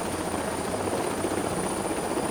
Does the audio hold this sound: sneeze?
no